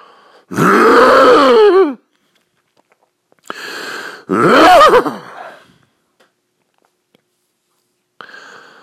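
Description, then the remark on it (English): A loud, gravelly throat clearing before a Tony Robbins impression comes in two rough, voiced bursts with a growling, wavering pitch, separated by a short pause, then a brief faint rasp near the end. “Let me clear my throat for a moment.”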